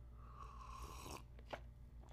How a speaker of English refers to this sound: Sorry for slurping with my tea. I might have to fucking edit that out anyway.